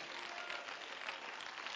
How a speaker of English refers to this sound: Praise God. Praise God. Clap your hands to the Lord again.